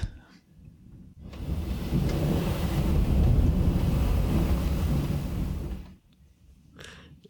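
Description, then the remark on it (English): A long, deep rumble of thunder rolls steadily for about five seconds, loud and full-bodied, then cuts away to near quiet with only faint stray sounds afterward. “I just heard so much thunder. I kind of hope that came over the recording.”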